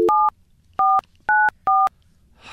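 Four crisp telephone keypad tones beep one after another at an uneven pace as a phone number is dialed, each a short, bright two-pitch note, loud with quiet gaps between them and no talking.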